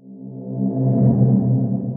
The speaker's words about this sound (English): We're not going to take a break, but Kyle's going to do one of those cool swoosh noises. Star wipe.